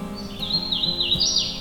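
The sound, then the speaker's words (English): A hooded warbler sings a bright, continuous run of high whistled notes that slide and step upward, heard clearly on its own with a faint background hum. “The hooded warbler is a bright yellow warbler with a green back.”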